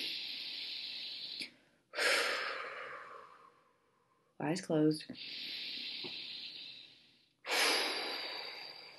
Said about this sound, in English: So if you're in a place where it's possible to close your eyes, we're going to take 3 deep breaths together in that embarrassing out loud breathing kind of way. Here we go.